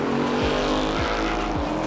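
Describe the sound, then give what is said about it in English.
A Mustang, an American sports car, roars loudly and steadily with repeated rising revs, while tires squeal through the sustained burst of noise. No one speaks. “Yeah, that Mustang. Arguably the most definitive American sports car of all time.”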